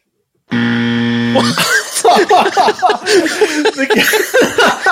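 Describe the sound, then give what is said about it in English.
A loud, harsh game show wrong-answer buzzer blares for about a second during a football player quiz, then cuts off into an outburst of laughter and overlapping voices. “said that and did the most victorious fist pump that you could imagine before the buzzer just killed him.”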